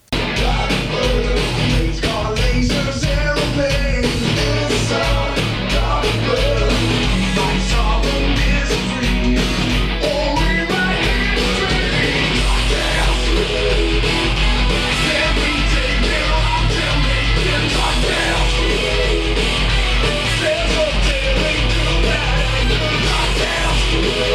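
A heavy metal cover of a cartoon theme song, with dense distorted guitars and fast pounding drums staying loud and driving throughout, with no singing.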